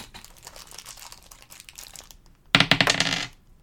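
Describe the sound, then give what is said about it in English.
New dice rustle and rattle as they are pulled from a bag during a tabletop game: a faint crinkling shuffle followed by a louder burst of clattering clicks, then quiet. No one speaks. “Hold on, they're still in the bag. I gotta get them out.”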